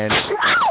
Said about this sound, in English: My bad. No. Bless you. Right, sneeze. Yeah, I do. I have a little squeak at the end.